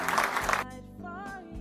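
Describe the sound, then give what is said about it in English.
A short burst of a church audience clapping at Calvary Chapel Cary in Apex, North Carolina: dense, many-handed applause that stops abruptly after about half a second, giving way to a sustained, wavering voice or musical tone. “Can somebody clap their hands?”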